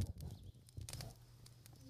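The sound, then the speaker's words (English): An outdoor campfire built from collected sticks crackles with scattered sharp pops and snaps, irregular and fairly loud, over a steady low rumble, with no one speaking. “That is a crackle of a campfire.”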